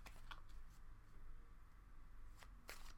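Tarot cards being shuffled, a few quick crisp riffles and slaps scattered across a few seconds, fairly soft over a low steady hum, with no one talking.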